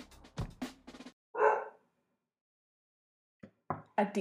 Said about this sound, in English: All right, let's see how much of Jada barking we're picking up.